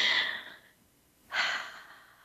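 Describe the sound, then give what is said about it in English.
Two deep, breathy inhalations taken during a guided deep-breathing pause, the first tapering off, then a short quiet pause before a second long, airy breath drawn in. No talking. “Please keep breathing in deeply.”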